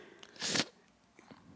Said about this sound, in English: That's a slurp. But go ahead. I can't do a teeth suck.